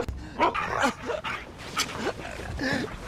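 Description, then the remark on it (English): A dog gives a rapid series of excited, high-pitched barks and yips, several in a row over a few seconds, fairly loud, with a whining edge between them. “I got a dog in the mirror!”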